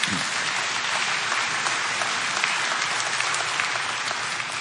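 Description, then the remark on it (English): Steady, dense applause from a large church audience, many hands clapping at once in a continuous crackling wash that holds at an even loudness for several seconds. “You can give yourself a hand.”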